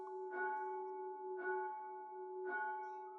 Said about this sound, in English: put away the book as the bell was struck for tierce.